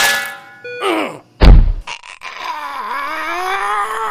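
A single loud, heavy clonk of an iron frying pan striking a head, preceded by brief tonal sounds and followed by a long, wavering, pitch-sliding groan.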